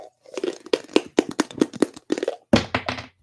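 A small die clatters across a hard tabletop, a quick run of sharp tapping knocks and thunks, bouncing irregularly for a couple of seconds before a final heavier clack as it settles.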